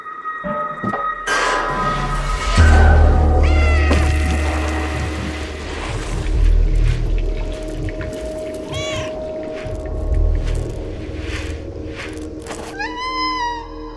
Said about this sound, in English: So it's called Stray because it's the lost cat and he or she needs to find their way home doing cat stuff.